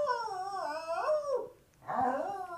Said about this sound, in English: I love you, dog. Hey, dog, I love you. I can get her to talk if you want. You want me to get her to talk?